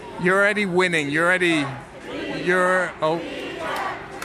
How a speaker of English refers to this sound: It's Richard, it's not Rigo. Sorry, now that I've actually listened to what the crowd is chanting, this is a group of Ecuadorian fans. And how come they're not chanting for you? Yeah, serenading Richard Carapaz.